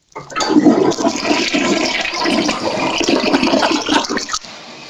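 A toilet flushes loudly, a steady rushing gush of water lasting about four seconds before cutting off abruptly, with no voices.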